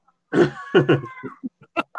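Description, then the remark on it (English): Myna birds give a burst of harsh, raspy squawks followed by a string of short, sharp chirps and clicks, loud, with no voices alongside. “Minor birds are making a noise again.”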